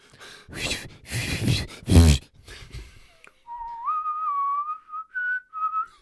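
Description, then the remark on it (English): After a few seconds of breathy, noisy rustling, someone whistles a short, eerie melody of sustained and gliding notes, fairly loud and alone. “It's like, a whistling like over mics is terrible.”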